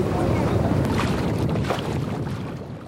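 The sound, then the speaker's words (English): A wooden sailboat built in 1908 glides through water with a steady rush of water and wind noise buffeting the microphone, continuous and fairly loud for the whole few seconds, easing slightly toward the end. “This boat was built in 1908. Well, they're just beautiful to sail. They just glide through the water.”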